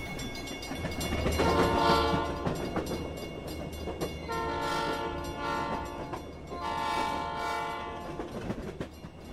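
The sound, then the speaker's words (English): A steam train engine rumbles steadily while its horn sounds three long, chord-like blasts, the second and third stretching out for about two seconds each. No one speaks. “Down the line, I figure that it's engine number 49. She's the only one that'll sound that way”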